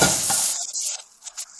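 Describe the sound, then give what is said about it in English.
Onions and peppers hit a hot pan with a teaspoon of olive oil over medium-high heat, with a burst of loud sizzling that quickly thins into scattered crackles and pops, with no one speaking. “As soon as you get your oil in the pan and that pan is hot, add your onions and peppers. It should sizzle because we are cooking over high heat, medium high heat.”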